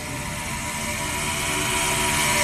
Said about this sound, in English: The cars fly by down the backstretch.